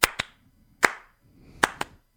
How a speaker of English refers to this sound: Are you clapping? You got it right. That's right. It's a two-and-one. It's a two-and-one clap. Okay? It's not just a clap. It's a two-and-one clap.